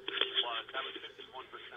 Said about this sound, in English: Hold on, if this is going to echo for a second, let me fix this.